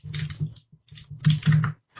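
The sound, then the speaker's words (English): Steady typing on a computer keyboard, with quick bursts of key clicks separated by short pauses and a couple of louder keystrokes near the end. “Everybody's typing and talking about something else.”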